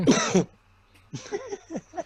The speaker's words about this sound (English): Yeah, bro, in my school, people would do the coughing shit. That sounded like coronavirus.